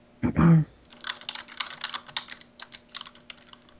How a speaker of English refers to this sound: I was typing a thing to a person.